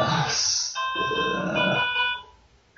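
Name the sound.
phone ringing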